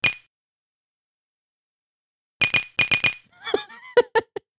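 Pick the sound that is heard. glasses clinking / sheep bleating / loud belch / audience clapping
glasses clinking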